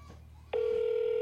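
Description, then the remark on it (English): An outgoing phone call rings: a steady electronic ringing tone cuts in abruptly after a quiet moment and holds loud and even to the end, with no one picking up or speaking. “No, they ain't answering. It's ringing too much.”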